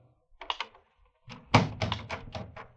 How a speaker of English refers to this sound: It was long after midnight when my office door slowly opened. Well, I say, you might knock first, you know.